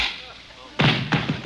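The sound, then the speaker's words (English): A glove slaps a face: two sharp, fairly loud smacks in quick succession, then a couple of lighter pats, over a faint steady hiss. “I slap your face with my glove.”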